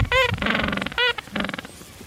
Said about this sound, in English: Okay, this is a penguin sound. This is coming from the penguinsinternational.org YouTube video.